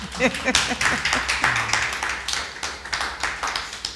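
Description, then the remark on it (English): An audience claps steadily for a few seconds, a dense patter of crisp hand claps with a loose rhythm, while a voice briefly sounds over the start. “You're allowed to clap.”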